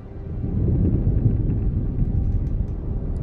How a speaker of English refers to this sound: I don't need sight to know there's a storm brewing.